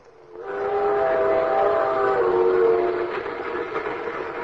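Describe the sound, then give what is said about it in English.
A ski train rumbles along steadily while its whistle sounds a long, loud, multi-toned blast that fades after a couple of seconds, leaving the rolling noise of the cars. No one speaks. “Ski trains.”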